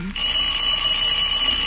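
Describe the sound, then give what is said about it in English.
A doorbell rings as one steady, high-pitched electric buzz that holds at an even, loud level for about a second and a half, with no voices over it. “If it ain't flies, it's doorbells.”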